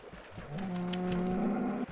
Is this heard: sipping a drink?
no